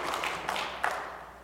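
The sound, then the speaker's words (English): A church audience claps for the goodness of God during a sermon, a soft, steady wash of many hands with a few slightly sharper claps standing out, fading a little toward the end. No one speaks. “Yeah, you can clap for the goodness of God.”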